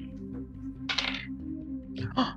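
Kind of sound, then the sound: household object, dice being rolled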